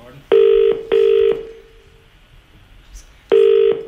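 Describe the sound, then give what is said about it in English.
A phone call to a pet shop ringing out on the line: two short, steady, buzzy tones in quick succession, a pause of about two seconds with faint hiss, then the tone pattern starts again. “So he rings a pet shop or several pet shops, and here's what happened.”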